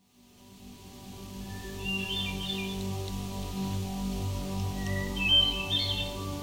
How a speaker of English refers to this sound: The hermit thrush is a forest songbird with a drab brown plumage and a well-known melancholy song. They lurk in the understories of northern forests in the summer and the southern forests in the winter.